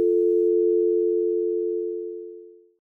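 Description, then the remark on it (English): A steady, continuous telephone dial tone from a hung-up receiver hums at a constant pitch for nearly three seconds, then cuts off abruptly. No voices are present. “turned back to his desk, hanging up the receiver, which then had started to emit a ghostly dial tone.”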